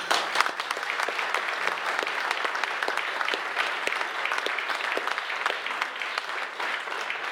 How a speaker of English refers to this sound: My mum said if you get a round of applause at the beginning, stop, because it's only going to get worse.